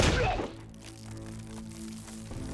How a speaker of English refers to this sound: I rapped smartly on the bedroom door, got no answer, and finally threatened to break the door in if Frank didn't open up. When I still got no answer, break the door in I did.